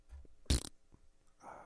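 A single short, loud fart burst onto a hand cuts in sharply and ends quickly, with low murmuring sounds before it and a softer breathy rasp trailing near the end.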